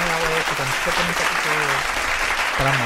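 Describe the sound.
Steady, dense applause fills the whole few seconds, a broad crackling wash of many hands clapping at once, with voices cheering and calling out loudly over it.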